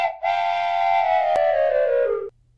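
A single loud train whistle blast rings out for about two seconds on its own, its bright, multi-toned pitch sagging slightly just before it cuts off.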